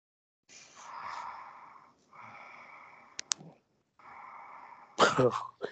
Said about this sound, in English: Who's breathing like that? Me, stupid.